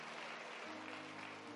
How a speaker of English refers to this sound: Let's get the Lord a hand clap for all of our classes.